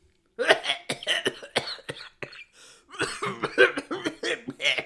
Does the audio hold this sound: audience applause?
no